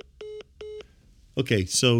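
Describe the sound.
Two short, even keypad beeps sound in quick succession as a phone is dialed to make a call, before a voice starts talking over the line.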